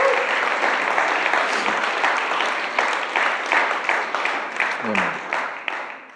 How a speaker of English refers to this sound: And I just think that deserves a bit of an applause for God. Amen.